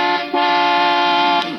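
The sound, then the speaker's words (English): A loud, brassy car horn blares in one long sustained honk, used as an office buzzer to call the stenographer, with a brief stutter right at the start before holding steady for over a second. No voices are heard. “Heavenly days, you call that a buzzer?”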